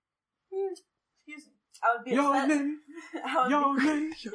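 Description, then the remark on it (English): A person lets out a long, drawn-out voiced yawn, then a second one, close and fairly loud, with a few short murmured sounds before them. “Yawning on a podcast.”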